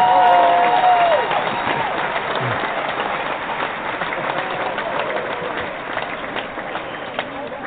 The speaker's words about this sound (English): We have to give you proper applause here.